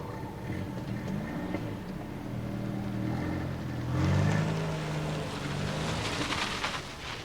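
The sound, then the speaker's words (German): A car's engine hums steadily and grows louder around the midpoint as the vehicle draws near, its rumble and tire noise filling the scene, with no voices. “Da kommt noch ein Auto.”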